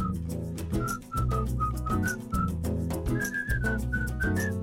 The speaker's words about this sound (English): So I thought it'd be cool to write a hook that is the whistle, and within the hook, within the whistling parts, we write verses.